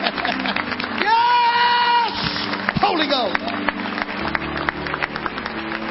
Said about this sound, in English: Clap happily. Come on. Clap like if your hands are smiling.